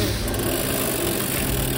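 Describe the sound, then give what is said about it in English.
An old clock mechanism clatters into motion as its weights, chains and pendulum begin to swing, a dense, steady mechanical whirring and rattling of gears and chains that holds a constant level throughout, with no voices. “The weights, chains, and pendulum began to swing.”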